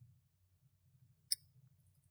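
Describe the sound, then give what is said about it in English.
A single quick, crisp computer mouse click, made while someone works on magazine ads, stands out once against a steady low hum; no one speaks. “Also, if you hear clicking, I'm going to try and edit it out.”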